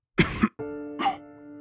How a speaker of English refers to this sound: Years later, your mother's coughing.